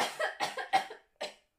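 A rapid burst of four or five harsh, sputtering coughs from someone choking on a drink, then a brief pause and one final cough. No talking.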